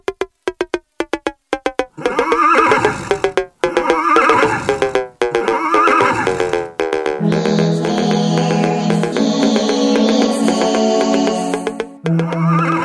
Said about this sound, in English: Oh, cue the horse sounds.